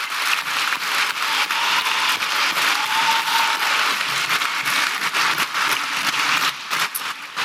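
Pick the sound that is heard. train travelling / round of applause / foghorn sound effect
round of applause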